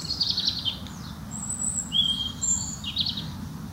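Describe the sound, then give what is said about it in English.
Several birds sing and chirp in the woods, with high, bright trills and whistles scattered across the moment over a steady low ambient rumble of wind or background noise. “I don't know if you can hear, but I'm out in the woods and there are birds singing.”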